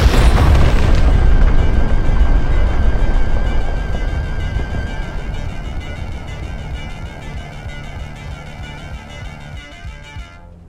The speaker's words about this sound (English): Everything grows dark as this red meteorite comes crashing into the ochre vegetation.